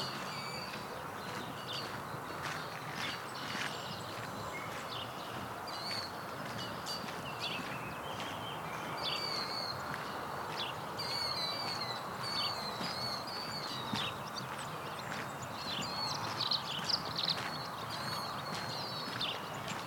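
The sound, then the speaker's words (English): Savannah sparrows sing thin, high, buzzy phrases again and again in a field, fairly faint against a steady outdoor hiss, with occasional soft rustling or footstep-like sounds. “It's a field to the left of me with some savannah sparrows in it.”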